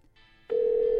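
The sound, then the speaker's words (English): A telephone ringback tone on an outgoing call to a mother: a steady, loud electronic hum that starts abruptly halfway through after a quiet, hissy line, with no talking. “Okay, it's ringing.”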